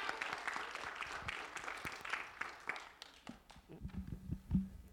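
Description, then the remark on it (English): An audience bursts into sustained applause for the office volunteers, a dense wash of many hands clapping that gradually thins into scattered, sharper individual claps toward the end. “So we should give the office people a big round of applause.”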